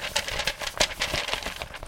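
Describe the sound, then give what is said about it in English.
Papers being shuffled: a quick run of dry, crinkly rustles and soft flicks, steady and fairly loud for about two seconds, with no voices. “You'll just have to find out on the other side of this paper shuffle, because it's time for the big discussion.”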